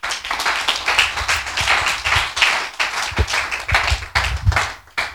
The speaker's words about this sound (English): Clap your hands, church.